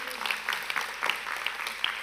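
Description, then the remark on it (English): A large crowd claps steadily and densely for a couple of seconds, cheering for a woman after a prayer in Jesus' name, with scattered voices cheering underneath, moderately loud and reverberant. “Now, let's give her a cheer.”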